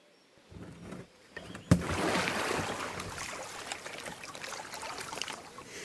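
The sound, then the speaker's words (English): A yellow kayak scrapes and bumps, then drops into the River Derwent in North Yorkshire with a sharp knock, followed by steady splashing and lapping as it settles and moves off, at 5:30 in the morning with faint wisps of mist on the water. No voices. “She's launching her yellow kayak into the Derwent, where the faintest wisps of mist still cling to the water.”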